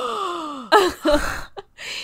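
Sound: a person gasping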